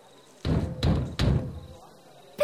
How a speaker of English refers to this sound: Stand back while I do the knock, the coded knock to get us into the tavern, boy.